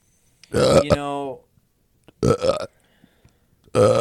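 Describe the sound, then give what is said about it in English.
A loud burp rumbles out for nearly a second, followed by two shorter, gruff belches after brief pauses, with no talking in between. “If you burp one more time, I'm going to do something so drastic you won't even.”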